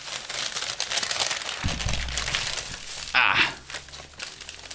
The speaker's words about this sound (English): By the way, guys, sorry for all the rustling you hear. I'm just unpacking my order.